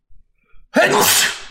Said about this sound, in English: He sneezes just like that.